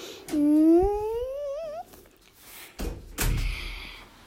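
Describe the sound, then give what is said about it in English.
A door being repeatedly opened creaks with a long, rising hinge squeak, followed by a couple of dull thumps as it swings and bumps, with no talking. “It's just this door noise when my dad keeps opening.”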